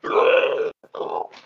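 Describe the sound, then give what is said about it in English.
A person growls out a loud, rough imitation of a Krayt Dragon roaring at Shock: one long gravelly bellow, a brief pause and a short catch, then a second shorter roar that trails off. “Gonna roar at Shock.”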